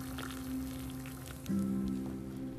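pouring

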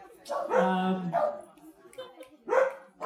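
dogs barking

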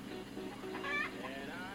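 chickens clucking

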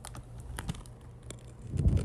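crunching potato chips

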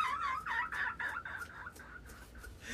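chicken clucking

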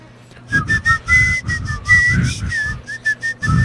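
person whistling a tune

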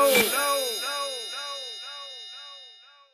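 phone ringtone chime

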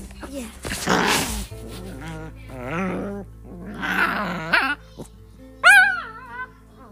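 puppy whimpering and yipping

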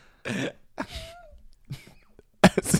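person coughing

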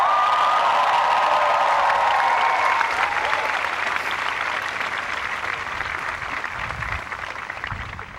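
audience applause and cheering

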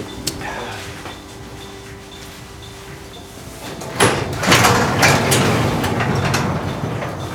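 door being opened

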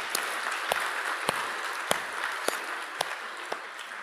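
audience applauding

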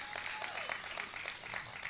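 audience cheering and applauding

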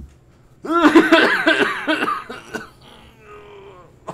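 heavy coughing

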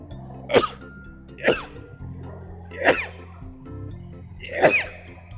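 repeated sneezes

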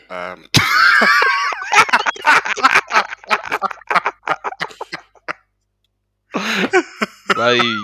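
burp

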